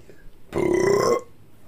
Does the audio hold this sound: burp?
yes